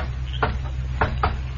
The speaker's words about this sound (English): There, in response to his knock on the door, a man appeared.